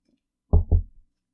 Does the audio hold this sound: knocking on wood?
yes